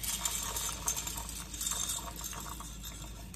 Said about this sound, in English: To start off, what I've done is I brought a pot of water to a boil, and now I'm going to salt my water and add in about a cup of pasta.